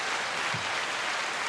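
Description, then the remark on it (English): A short burst of canned applause from an applause button sound effect, a dense, steady wash of many hands clapping at an even, moderate level, lasting about a second and a half with no voices. “Applause button.”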